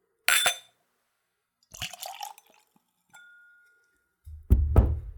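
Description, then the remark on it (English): A whiskey-based liqueur pours neat into a clean Glencairn whiskey nosing glass in short bursts, with a clink of glass and a faint ringing tone, ending in a louder splashing pour. “It's a whiskey nosing glass, ideal for tasting spirits neat.”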